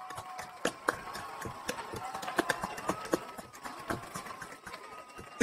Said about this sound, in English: This clapping is already unnecessarily long, but because it's glitching up, it's taking even longer. Let me check. I can hurry these people along. Dang, how long is that track? It's 30 seconds long.